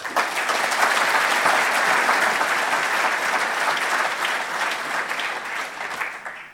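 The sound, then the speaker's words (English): Sustained audience applause at an evening event celebrating the Housing First Auckland initiative, a dense crackle of many hands clapping at a steady, loud level that holds for several seconds before tapering off slightly at the end. “Ladies and gentlemen, a warm round of applause, please”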